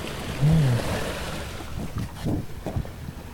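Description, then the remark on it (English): Waves splash and wash against the shore in San Francisco in a steady rushing roar, with a few stronger surges toward the end and gusty wind buffeting the microphone. “Get out of the splash zone.”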